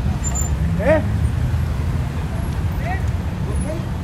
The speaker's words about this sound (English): Here at the San Isidro Port of Entry, close to 100,000 travelers pass through daily. SUVs, four-door sedans, and motorcycles wait in line as far as the eye can see. Street vendors filter through, selling hot coffee and snacks.